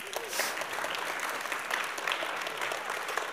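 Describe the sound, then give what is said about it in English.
An audience applauds steadily to celebrate its retired members as they stand, a dense wash of many hands clapping at even loudness throughout, with faint crowd murmur mixed in and no clear speech. “Celebrate, applaud.”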